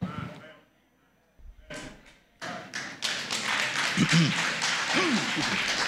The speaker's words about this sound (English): Yeah, thank you for clapping. That encourages me.